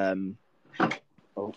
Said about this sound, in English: Just knocked a plate.